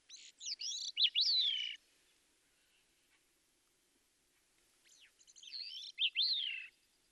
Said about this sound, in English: Let me just play for you, if I could, a recording that I made a few weeks ago of a gray-cheeked thrush singing way up in northern Alaska.